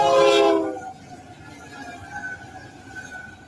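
A train passes on the track, opening with a loud, brief horn blast that gives way to a steady rolling rumble and faint ringing tones as the cars go by.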